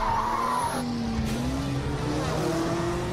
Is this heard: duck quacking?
no